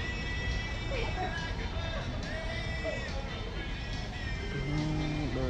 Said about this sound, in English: I thought I heard like cars. Yeah, you did, I guess. You didn't really have to look to know that there's cars right there.